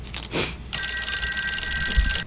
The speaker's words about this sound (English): Ring, ring. No, come on. Ring, ring.